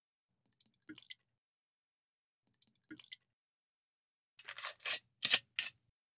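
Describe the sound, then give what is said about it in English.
A couple of soft clicks and short splashes, then a quick run of glugging, splashy bursts as Grant's Scotch whisky is poured into a glass, fairly quiet, with no talking. “Shall I start pouring them?”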